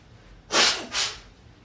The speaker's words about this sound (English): Sorry, I got the sniffles. I'm going to pause for a second. I'm going to blow my nose. Because this is just ridiculous. You want to hear the Bible, not me sniffling.